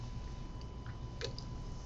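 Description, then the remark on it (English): A quiet sip from a can of Rockstar carbonated lemonade, with soft wet mouth sounds and a brief gulp near the end, heard alone without any talking. “Starting to like that Rockstar lemonade with bubbles in it.”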